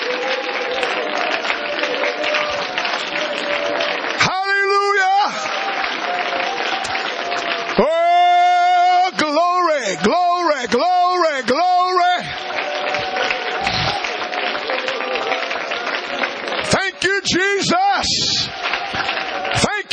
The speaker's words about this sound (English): And I want you to begin to clap your hands and rejoice in the Holy Ghost right now. Somebody give the Lord some high praise.